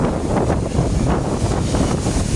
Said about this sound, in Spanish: Bueno, hay mucho viento, no sé si me van a escuchar bien, pero te quería contar algo.